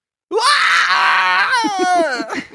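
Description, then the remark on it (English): A person vocally imitates the Wilhelm scream from Star Wars: a loud, strained, high-pitched cry held for about a second, then breaking into a few choppy, falling sobs. No words are spoken. “I can do the Wilhelm scream from Star Wars.”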